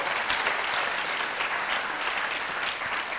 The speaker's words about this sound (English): Come on, give Jesus a big round of applause.